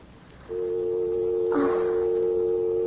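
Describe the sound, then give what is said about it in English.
After a telephone is hung up, a dial tone switches on abruptly and hums steadily, with a brief clattering handset noise partway through. No one speaks. “the second I hang up, which is right now.”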